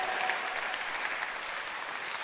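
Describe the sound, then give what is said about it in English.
An audience applauds steadily, a dense wash of many hands clapping at an even level with no clear breaks, filling the whole stretch without any voices on top. “You must see some, you must know that you are looking at something you must be clapping for every day of your life.”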